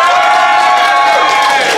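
A large audience in Phoenix applauds and cheers loudly to vote for the side it thinks is right in a debate, a dense, steady roar of clapping and voices that fills the whole short moment without letting up.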